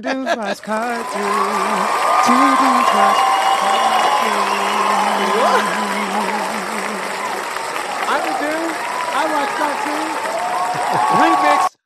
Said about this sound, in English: We have an applause and everything in front of a live studio audience.